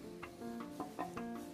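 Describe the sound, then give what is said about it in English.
A pet owl that has just woken up gives a quick series of short, raspy begging chirps for food, about five per second, quiet, with a faint steady hum underneath. “My owl woke up and needs a snack.”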